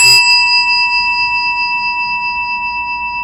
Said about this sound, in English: Allowing the sound of the chime to call you to presence in this moment, right here, right now.